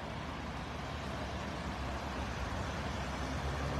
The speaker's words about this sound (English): And folks, here's the bucket truck.